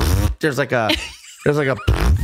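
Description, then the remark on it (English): A voice imitates the ripping, tearing sound of a queef: several loud, buzzy vocal bursts separated by brief pauses, with no actual words spoken. “See, I could tell the difference between a queef and a fart, because to me, queefs don't sound like a fart. They sound more like ripping, like a”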